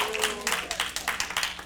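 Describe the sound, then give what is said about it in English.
An audience claps their hands in praise of God at a morning church service on the 21st day of a fast, in a steady, fast patter of many overlapping claps, moderately loud, with a faint murmur of voices underneath. “Oh, somebody clap your hands and give God some praise this morning.”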